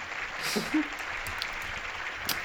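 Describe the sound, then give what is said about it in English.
Steady audience applause, a dense wash of many hands clapping at an even level throughout, with a brief murmur of a voice briefly rising underneath near the start. “Audience applause immediately jarring.”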